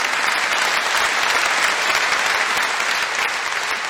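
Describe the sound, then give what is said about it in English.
A crowd breaks into sustained, dense applause, steady and fairly loud throughout, with no voices rising above the clapping. “You can applaud that, yeah.”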